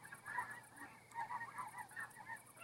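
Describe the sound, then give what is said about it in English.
Geese flying above the speaker honk repeatedly in a loose, overlapping chorus, fairly faint, with a steady high-pitched hiss in the background. “I wonder if you can hear the geese above me.”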